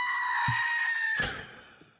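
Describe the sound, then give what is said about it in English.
A screaming goat toy, a goat figure standing on a little pedestal, is pushed down and lets out one loud, human-like yell that holds steady for about a second, then breaks into a harsh, raspy burst and fades out. “So, that aside, it's actually a screaming goat.”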